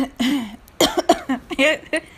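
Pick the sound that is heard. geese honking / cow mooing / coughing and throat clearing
coughing and throat clearing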